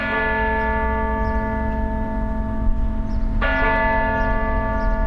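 Church bells ring out steadily during May Day festivities in Oslo, Norway, their rich overlapping harmonic tones sustaining over a low rumbling background, with a fresh strike around the middle that renews the ringing. No one speaks.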